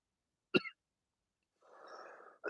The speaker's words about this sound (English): I talk about it, it makes me cough more. I'm still sick. What can I say? I thought I was getting better. It's not really going away.